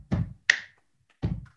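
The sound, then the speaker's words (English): Rhythmic body percussion: a dull slap on the legs, a sharp ringing hand clap, a pause, then another leg slap, like the start of a stomp-stomp-clap beat, the beat made by people slapping legs and clapping in a GMC truck commercial. No one speaks. “They was slapping their legs and clapping their hands without being on the wheel. Like the beat, like.”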